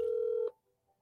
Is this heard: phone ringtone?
yes